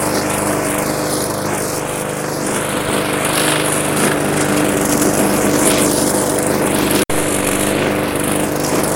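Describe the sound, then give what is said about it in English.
A lawn mower engine runs steadily, a loud continuous drone with no pauses, cut off for a split second near the end before carrying on, as a lawn with wet, dewy grass is mowed one-handed. “The mowing, you know, one-handed.”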